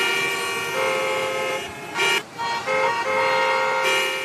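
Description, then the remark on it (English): Multiple car horns honk loudly and overlap in a dense traffic jam, sustained blaring tones with a brief pause midway before the honking resumes over a low rumble of vehicles. “Traffic jam with extra honking.”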